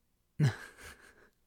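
A brief coughing fit: one sharp, forceful cough followed by two weaker, raspy bursts trailing off, with no talking.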